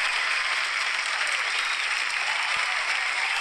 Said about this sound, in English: That's a lot of applause there.